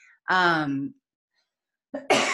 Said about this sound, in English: I'm clearing my throat chakra as I say that.